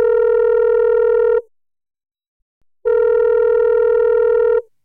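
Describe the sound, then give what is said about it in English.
A telephone ringing tone sounds twice, each a steady electronic buzz lasting over a second, separated by a pause of silence. It is loud, with no voices. “But this phone call was going to spark a different conversation. Let's listen in on the call.”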